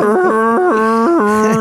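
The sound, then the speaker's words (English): A voice imitates the Vikings horn with a sustained, cow-like lowing that wobbles between two pitches for under two seconds, fairly loud, with no other sounds around it. “I tried to do the horn, but I did like a prepubescent like cow.”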